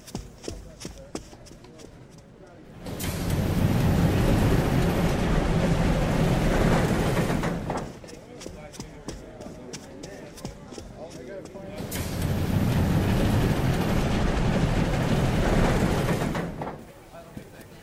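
A steam train rolls along the tracks with steady rhythmic clacking, swelling twice into a loud rumbling roar before easing back to quieter clatter.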